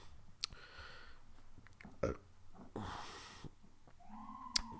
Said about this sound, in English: Don't listen to those burps. Disregard those burps.